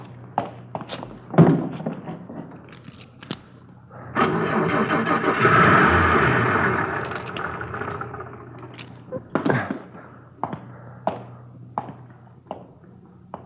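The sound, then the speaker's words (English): A car engine cranks with a rapid churning rhythm as the ignition is turned on, then catches and roars up to a loud idle before settling, framed by scattered thumps and clunks. “It wouldn't start for me. You should have turned on the ignition.”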